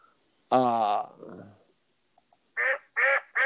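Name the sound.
geese honking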